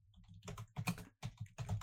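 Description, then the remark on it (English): Rapid clicking of keys on a computer keyboard, typed in quick bursts separated by brief pauses, fairly quiet, with no voices, while pulling up a Jason Huntley player review. “Something up. Typing.”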